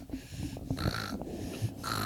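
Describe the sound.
A voice imitates loud snoring, with a couple of rough, rattling snorts and breathy inhales over about two seconds.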